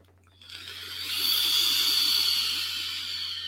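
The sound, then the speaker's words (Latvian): A steady airy hiss rises after half a second and holds for a few seconds, like a draw on a vape pen with its airflow half closed releasing vapor, with no talking. “Tā, pietiek pļāpāt, jā, vēl kāds tvaiks.”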